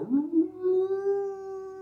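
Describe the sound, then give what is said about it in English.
A person imitates a bloodhound's howl with their voice, a sustained, rising then steady wavering tone held for nearly two seconds, fairly loud with no other sounds. “It sounds like a bloodhound in my neighborhood, though, because, like, every time there's some loud noise, that motherfucker's just, they're like...”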